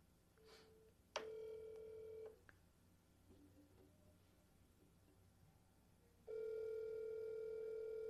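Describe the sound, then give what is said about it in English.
An outgoing phone call ringing on the line: two steady electronic ring tones, the first about a second long and the second starting after a long pause, clear and fairly loud with no talking. “Boy, he better answer his phone.”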